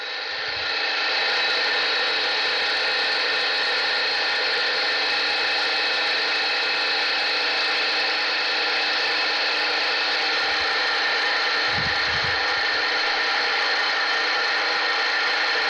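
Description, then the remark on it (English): An electric mixer whips a mixture until smooth, with a steady, loud motorized whir that holds an even pitch for the whole stretch, with no voices over it. “So we're just whipping it good. They say you want to whip it until it's smooth.”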